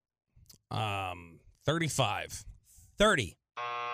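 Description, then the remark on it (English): A flat, harmonically rich buzzer sounds twice, a sustained tone near the start and another cutting in at the end, with a couple of brief voiced vocal sounds in between. “Nice buzz.”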